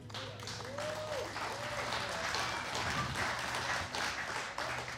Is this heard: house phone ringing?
no